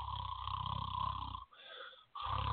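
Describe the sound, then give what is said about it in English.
A person loudly imitates snoring: a long, rumbling, raspy inhale, a brief pause, then another rough snore starting up, exaggerated, with no talking. “Snore City.”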